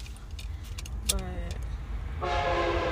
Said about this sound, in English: But hello, train. Die, train.